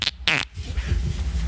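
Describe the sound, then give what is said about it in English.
A loud fart into the speaker's own microphone: two sharp, buzzy bursts in quick succession, followed by a low, rumbling flutter that trails on for about a second. “At least you farted in your own mic.”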